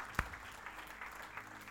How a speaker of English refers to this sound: Church, you should be getting excited, yes. Come on, can we give God a big round of applause? Thank You, Jesus.